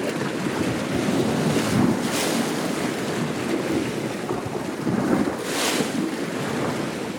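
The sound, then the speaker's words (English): Adriatic Sea waves hit a rocky shoreline and swirl in the rocks along the coast near Rovinj, Croatia, with broad surging rushes and two brighter splashes breaking through a constant watery roar, fairly loud with some wind buffeting. “recordings he made of waves hitting the shoreline and swirling in the rocks along the coast near Rovinj, Croatia.”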